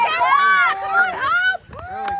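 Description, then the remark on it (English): Team supporters cheering on runners at the 600 mark of a race, with several voices shouting in loud, overlapping, drawn-out yells that pause briefly before another burst of calls. “You can hear our guys cheering.”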